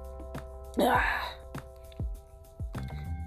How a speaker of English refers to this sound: Sorry. I had to clear my throat, y'all. I've been talking all morning. So, gotta get my throat together.